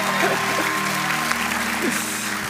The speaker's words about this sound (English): Sorry, you guys were being so nice and polite. I interrupted you. Mom and Dad, they were trying to clap again for you, so just so you know. Hey, there we go.